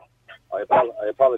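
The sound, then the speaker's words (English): A dog barks at a caller's house in a quick run of four or five loud, sharp woofs, after a softer yip at the start. “I apologise, your dog is barking, your alarm is going off, and it's all critical in your house at the moment.”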